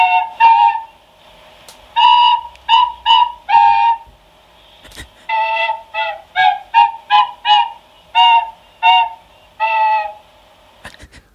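A tin whistle and a little recorder played at the same time, one in each nostril, piping the tune Pease Pudding Hot: a simple, bouncy tune in short bursts of notes with brief pauses between phrases, fairly loud, with no talking.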